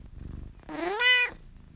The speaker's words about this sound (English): And in the future, could you please not meow while I'm trying to do my podcasts?